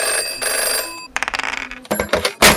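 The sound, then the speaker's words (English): A telephone rings with a bright, trilling electronic tone, its steady first burst followed by rapid pulsing rings that stop and start over a couple of seconds. “Phone rings, you answer it. Direct the call.”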